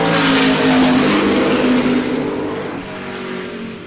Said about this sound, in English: And we've got some very, very big ex-Le Mans cars and of the sports car of the Le Mans type going through at the moment. I think enough of the noise here.